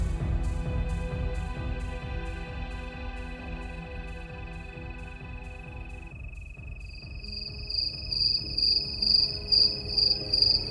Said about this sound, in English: Have you ever really paid attention to the crickets that live all around you? We hear them as background noise, like birds, or calls, or gunshots. Let's take a minute to pay attention for once to the crickets. Just listen to them. Sit still.